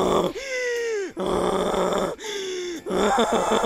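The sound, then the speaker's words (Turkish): A donkey brays loudly with all its strength, its harsh call see-sawing between drawn-out wheezing tones and raspy blasts in a rhythmic cycle across the whole stretch, with no voices. “Eşek dostumuz mutluluktan keyifli şekilde tüm gücüyle anırmaya başlamış.”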